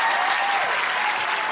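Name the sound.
audience applause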